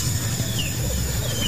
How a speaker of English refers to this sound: Here's an example of more people degassing a cow, I guess. You can hear it. Like, the second it pops in, you can hear that.